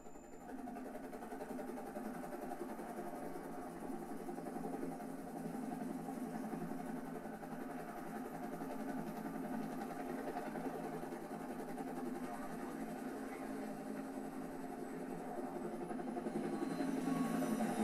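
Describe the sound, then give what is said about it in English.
A military helicopter carrying guns drones steadily with a dense mid-low hum that holds constant and swells slightly toward the end, with no one speaking. “If you know whose house that is, so to speak, helicopter.”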